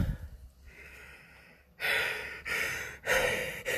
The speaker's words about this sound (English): Trouble breathing there. Just acclimatising back to the above sea level.